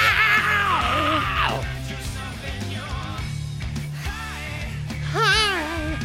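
A rock singer screams and yells in raw, strained bursts over loud, dense band music, with one long wailing cry at the start and another sharp scream near the end.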